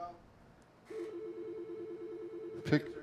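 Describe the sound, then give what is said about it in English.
An electronic telephone ringer, its volume just raised, starts after a short quiet moment and sounds a steady, rapidly warbling tone at moderate loudness, with a brief louder clunk near the end. “So that's the ringer phone.”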